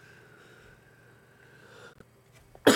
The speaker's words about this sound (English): It's like my throat is kind of itchy. The only way for me to itch is to cough.